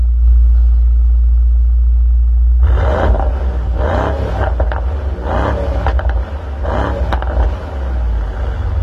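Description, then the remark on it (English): A turbocharged Mercedes sports car engine rumbles low at idle, then revs hard in a series of loud bursts, the pitch climbing and falling with each throttle blip. “They get the engine noise like spot on, and they always have, even through this whole turbocharged transition.”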